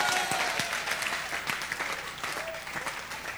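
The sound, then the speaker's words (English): A crowd applauds steadily, a dense patter of many hands clapping at moderate volume throughout, with a few faint voices and sharper individual claps standing out from the wash. “May God bless all of you who are clapping.”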